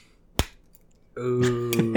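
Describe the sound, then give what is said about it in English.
A single sharp, dry plastic crack as the plastic screw-top cap of a glass whiskey bottle is twisted loose, followed a moment later by a person's voice starting up. “Got that plastic break. That hot screw-off action.”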